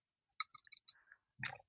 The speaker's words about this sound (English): I don't know if you heard that. Oh, I can't see it. Was swallowing.